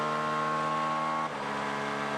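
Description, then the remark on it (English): A 2.6-litre V6 Acura GTP prototype race car engine screams at high revs with a steady, harmonic whine, then briefly dips in pitch as it shifts before climbing again. Its rev limit is set at just over 9,500 rpm. It's loud, with no voices. “And that Acura has the highest rev limit of any of the GTPs.”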